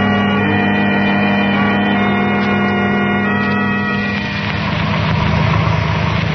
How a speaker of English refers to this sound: The car with Herbert and the girl is just pulling over to the curb, Dr. Dharma.